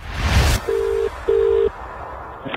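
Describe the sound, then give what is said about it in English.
A brief whoosh of hiss, then two steady electronic telephone ringing tones before the call connects, each under half a second with a short gap, clear, followed by quiet line noise. “She's actually working at the time she receives this phone call.”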